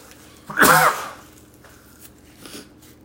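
A single loud sneeze from a sneezing fit bursts out sharply, followed by a couple of faint, soft breathy sounds, with no talking.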